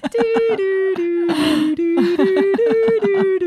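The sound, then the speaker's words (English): A long, drawn-out vocal yawn from one person, loud, holding a steady moaning pitch for a few seconds with a breathy, airy gasp partway through, as the person yawns and stretches. “As I yawn and stretch.”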